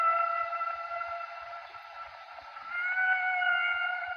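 A long, sustained whale call with several steady tonal bands that slowly rise and waver, haunting and continuous for a few seconds, with faint low clicks beneath it and no talking.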